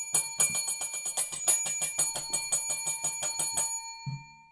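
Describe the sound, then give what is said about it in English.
A bell rings rapidly and repeatedly for about four seconds, a quick metallic trill with bright ringing overtones, then stops abruptly, followed by a brief low thump. “He seems to be agitated by the bell.”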